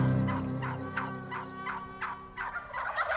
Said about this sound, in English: All are welcome at this roundtable conversation about one of the wariest creatures in the woods, that's the North American wild turkey.